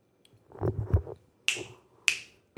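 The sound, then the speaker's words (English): Two loud, crisp finger snaps by a woman ring out about half a second apart, each a sharp bright crack, following a brief stretch of duller low thumps and rustling. “She's not clapping her cheeks. She's snapping.”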